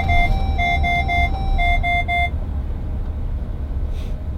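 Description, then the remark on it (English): A car's collision sensor alarm beeps rapidly, about eight sharp electronic tones in a steady run, over a low engine and road rumble, set off when a Kia slammed on its brakes. The beeping then stops and only the rumble continues. “These sensors on these cars, and then they ring all the alarm bells.”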